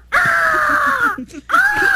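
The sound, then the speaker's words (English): An eagle gives a loud, piercing, strained, desperate-sounding cry, a long drawn-out scream followed after a brief gap by a second, shorter one, clear with no talking. “Eager, let's hear the angry period impatient. Eagle again.”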